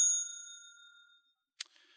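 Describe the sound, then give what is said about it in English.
A bell is hit once, giving a single bright ding that rings out clearly and alone, its metallic tone fading away over about a second, followed by a short silence and a brief soft click. “But if you are already familiar with this story, but still want to see exactly what and how is changed in the conclusion, in the ending, then I'm going to hit the bell for that as well.”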